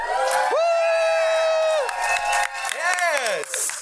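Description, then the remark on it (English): A loud, drawn-out whoop rises over a noisy live crowd, followed by a second rising-and-falling cheer, with audience shouting and excitement filling the background. “I need a cheer. Give me some fucking enthusiasm.”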